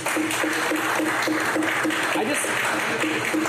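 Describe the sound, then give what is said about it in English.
An audience claps steadily for a few seconds to show they think the Cleveland Browns will make the playoffs next year, a dense, even wash of many hands with a faint murmur of voices mixed in. “Clap your hands if you think the Browns are going to make the playoffs next year.”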